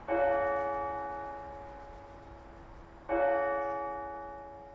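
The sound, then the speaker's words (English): Two deep strokes of the automated hourly bell chimes of St. Mel's Cathedral in Longford Town ring about three seconds apart, each with rich, layered overtones and a long, slowly fading hum, with no voices present. “But now, thanks to a new automated system, hourly chimes and hymns have returned.”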